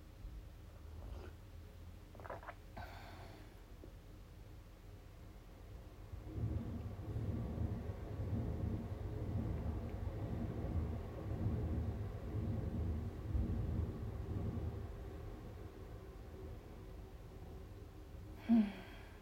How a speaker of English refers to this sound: I wonder if you heard that train rushing past. It's right behind where I'm staying, or near to where I'm staying.